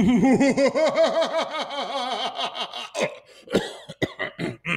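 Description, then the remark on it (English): A rapid, rhythmic run of voiced hacking bursts breaks into several harsh, separate coughs, fairly loud, with no talking. “Need a cough drop?”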